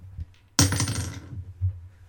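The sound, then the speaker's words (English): Two dice clatter onto a hard tabletop in one sharp burst during a tabletop game attack roll, rattling and tumbling briefly before settling into quiet after about a second. “So we're looking for less than 9 on both dice.”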